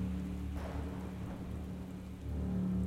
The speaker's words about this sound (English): Not long after, a fierce storm blew through the community